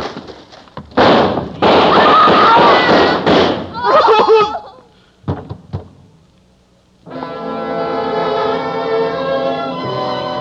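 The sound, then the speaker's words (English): A loud, dense volley of rapid gunshots from several police guns, a few more sharp scattered shots after a pause, then a sustained swelling musical chord takes over. “Ruth faced that door, fired a shot into the ceiling, and the guns of the police chopped her down.”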